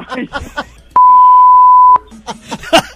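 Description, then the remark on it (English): A loud, steady one-second censor beep, a pure tone put in to cover an edited-out part in the middle of conversation, with people talking before and after it. “Just put a beep in there.”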